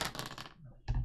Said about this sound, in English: Another 5. You're rolling dice? 5 tonight? I'm pretty sure he baked his dice.